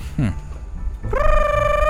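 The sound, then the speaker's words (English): A phone rings as a caller rings back, with a steady, bright electronic tone rich in overtones, starting about halfway through and holding loud to the end, after a brief squawky chirp at the start. “They're ringing back with aggression now.”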